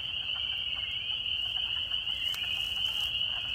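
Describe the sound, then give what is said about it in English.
A dense chorus of spring peeper frogs, heard while hiking in the Brecksville Reservation of a national park, their high, shrill peeps blending into a steady, ringing wall of sound that carries on without pause, with no voices. “he said that this was a type of frog called a spring peeper.”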